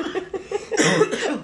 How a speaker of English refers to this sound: Excuse me, I'm sorry. It's going to be a podcast full of this. Of coughing.